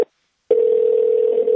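A phone line ringing while calling a random phone number in Anchorage, Alaska: a clipped ring, a half-second pause, then a steady, clear ringback tone that carries to the end. There's no talking.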